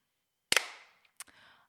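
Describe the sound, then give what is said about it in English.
A sharp, loud hand clap with a brief ringing tail, followed less than a second later by a second, quieter clap and some faint rustling. No one speaks. “Maybe if we clap now, you think he can align it backwards?”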